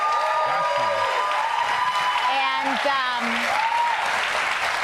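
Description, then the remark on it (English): Steady, dense applause from a Comedy Central studio audience, cued by an applause light at the phrase "path to citizenship", fills the whole clip at an even, fairly loud level, while voices speak briefly over the clapping. “But if you're in the Comedy Central audience, the applause light goes up when you hear path to citizenship.”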